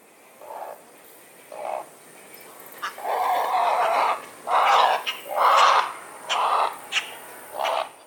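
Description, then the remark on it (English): Harsh, croaking bird calls from a great blue heron that has been disturbed: a few short clucks build into a crescendo and longer, raspy squawking alarm calls as it continues to be threatened, repeated in uneven bursts against a quiet outdoor background. “Often the cluck will build up to a crescendo call and then they'll do the squawking alarm calls if they continue to be threatened.”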